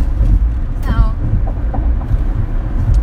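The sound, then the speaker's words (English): A steady, loud low-pitched rumble of road and engine noise fills the inside of a moving car, with a brief murmur of voices partway through. “Because we're in the car driving right now.”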